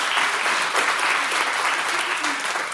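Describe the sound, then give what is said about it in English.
An audience claps steadily for news that the number of student serving spots at a summer camp has been doubled, a dense, continuous wash of applause that stays loud and even throughout without any talking over it. “Yeah, you can applaud that.”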